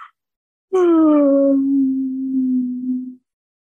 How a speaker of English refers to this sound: So I'm sure half of the listeners yawned with me.